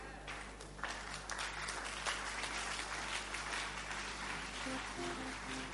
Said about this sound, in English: Are you clapping because God is doing something?